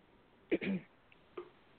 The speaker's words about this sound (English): Hello. Lady, yeah. Clearing your throat. No? Okay.